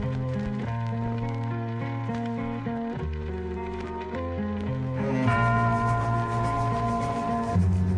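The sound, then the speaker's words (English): A Christian hip-hop song with deep, ringing church-bell tones sounding in a slow series over the instruments as an effect, growing fuller and louder toward the end. “You hear the church bell?”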